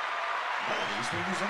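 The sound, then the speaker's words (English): A canned applause sound effect plays from an applause button: a steady, dense wash of clapping that holds at an even level for the whole moment, with people's voices starting to talk over it partway through. “You got an applause button?”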